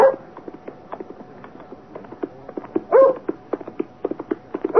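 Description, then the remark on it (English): A dog barks a few times, sharp yelps spaced across several seconds, over the busy, rapid clattering rhythm of a man on horseback galloping furiously along a lonely, hard-frozen moor road on a January afternoon. No one speaks. “First the dog, and then a man on horseback, galloping furiously.”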